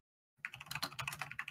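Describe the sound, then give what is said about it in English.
Rapid keyboard typing starts abruptly after a short silence, a dense run of crisp key clicks in an uneven rhythm with no voices. “Please stop typing. Why are you typing?”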